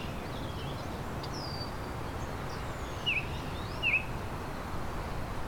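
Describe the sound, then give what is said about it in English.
Baltimore oriole song: a few clear, high whistled notes, two brighter ones near the end, over a steady background hiss of wind and insects in a sheltered patch of pine. No one speaks. “There's a Baltimore oriole. A high-pitched whistle.”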